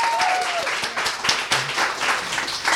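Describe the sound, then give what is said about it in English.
An audience applauds itself for showing up in a dense, steady burst of clapping that fills the whole stretch, loud and even, with a faint whistle or cheer rising briefly near the start. “Please give yourselves a hand for showing up.”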